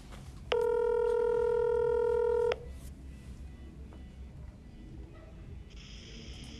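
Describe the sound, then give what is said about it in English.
A loud, steady electronic telephone keypad tone holds for about two seconds as a caller is dialed on the phone, then cuts off into quiet background, with a faint, high buzzing tone creeping in near the end. “Okay, let's get Anthony on the phone.”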